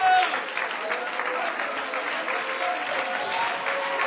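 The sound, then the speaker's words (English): Steady, polite applause from a crowd, a broad wash of many hands clapping at moderate loudness throughout, with faint murmuring voices mixed in underneath. “I wish somebody would get beyond a little polite clap.”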